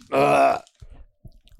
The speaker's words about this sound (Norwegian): Oi, kan ikke du hoste og kremte deg ferdig nå før vi begynner